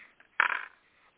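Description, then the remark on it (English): A brief clatter of three dice thrown by hand, rattling and tumbling onto a surface and landing on six, six and one, a sharp burst of small hard clicks that quickly settles, with a couple of faint taps before and after. “So I'm going to throw my dice I have here, and you can hear them rattling, I hope.”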